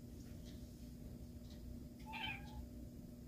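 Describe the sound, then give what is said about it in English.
A single soft meow from a house cat coming in and wanting to go out, rising briefly over a steady low background hum with no one talking. “Now my cat's coming in, wants to go out, but not right now.”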